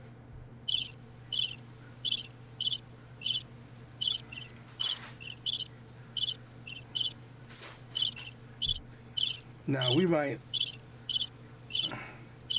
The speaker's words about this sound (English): Okay, somebody get these crickets out of here. Okay, I get it. Just turn it off.